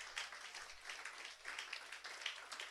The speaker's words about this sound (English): Clap for Jesus. Clap for Jesus.